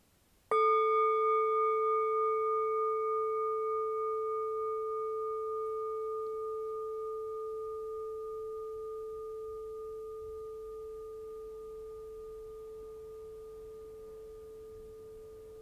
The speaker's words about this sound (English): So allowing yourself to get situated, and we'll start in with the bell.